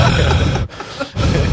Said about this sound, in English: Will you please stop breathing in the mic, Mr. Mayor?